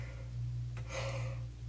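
A single breathy yawn, fairly quiet, with a soft drawn-out exhale over a low steady hum and no talking, from someone about to record a Bible reading.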